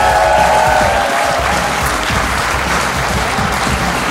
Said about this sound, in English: Thank you so much for listening, and thanks to our audience here in London. Give yourself a round of applause.